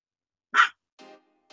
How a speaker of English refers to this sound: Oh, I heard a voice. I heard a dog.